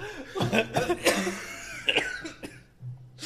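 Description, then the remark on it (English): Several harsh coughs burst out in an irregular cluster, loud and raspy, with brief gaps between them and no talking over them. “I'm sorry for your terrible cough.”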